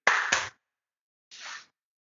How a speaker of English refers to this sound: You want to do a quick clap and then I'll get him in here too? 1, 2, 3.